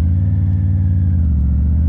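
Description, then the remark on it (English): A Triumph Tiger 900 motorcycle engine pulls away with a loud, steady, deep throbbing rumble and a faint higher whine above it, running continuously with no voices. “Moving off, the engine still feels far punchier low down.”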